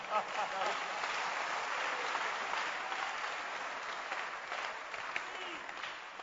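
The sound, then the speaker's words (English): An audience, asked to clap their hands, claps together in a dense, steady burst of applause that holds at an even level for several seconds, with a faint murmur of voices mixed in. “Can you clap your hands?”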